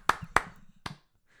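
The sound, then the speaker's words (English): Three sharp hand claps, the first two quick together and the third after a short pause, crisp and fairly loud with nothing else playing, like a brief scattered round of applause. “Can I get like a round of applause?”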